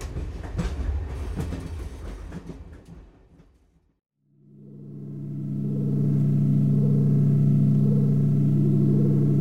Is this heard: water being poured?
no